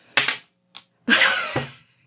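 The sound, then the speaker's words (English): A six-sided die clatters across a tabletop and lands on a 6: a couple of sharp taps, a lone click, then a longer rattling tumble that settles and fades. Fairly loud, with no talking. “I rolled a 6.”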